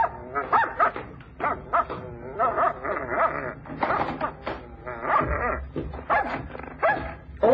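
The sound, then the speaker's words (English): A dog barks in quick bursts, mixing sharp yaps with high, drawn-out whimpers in an agitated, nearly continuous string for several seconds. “Are you sure the dog don't bite?”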